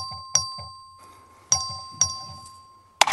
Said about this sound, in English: You know when they vote in the House, you hear that bell ringing yep. whenever they're voting on a bill or whenever they are taking attendance there? Well, you hear the House clerk ring the bell, and the Speaker makes the announcement.